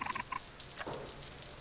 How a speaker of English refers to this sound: There. I hear the floorboards creaking.